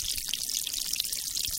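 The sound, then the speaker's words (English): A steady trickle of water flows from beneath a granite boulder on a mountain, at the source of the Chattahoochee River, just after rain; a continuous bright, bubbling wash with small splashy flickers and no voices. “We make our way across a ravine to where a steady trickle of water flows from beneath a granite boulder.”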